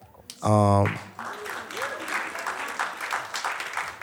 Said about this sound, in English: Yeah, you could clap for …. He's not here, but he's still ….